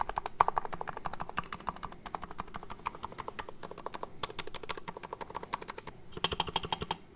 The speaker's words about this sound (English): That's that thock sound. So the Topray keyboards are known for this sound. It's called thock.